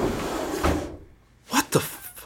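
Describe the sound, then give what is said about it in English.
A desk drawer, the second from the top on the right, slides open with a rough, rumbling scrape, then after a short pause two sharp wooden knocks sound, with no voices. “Now, go to your desk and open the second drawer from the top on the right.”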